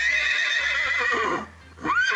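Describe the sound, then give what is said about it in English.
A horse neighs loudly, a long shaky whinny that fades, followed after a brief pause by a second rising call. No one speaks. “Maybe you might have a horse.”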